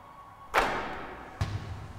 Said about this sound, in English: Swish. Sound sweeter than the roar of the crowd. The ball going through the net.